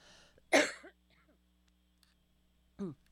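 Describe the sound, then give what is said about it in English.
A loud, raspy throat clearing, followed a couple of seconds later by a shorter, softer second clearing, with quiet hum in between and no talking. “I'm going to have to clear my throat for the wood frog.”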